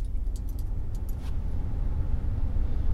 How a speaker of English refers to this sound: Oh, I'm going to turn on the truck. We need some cold air.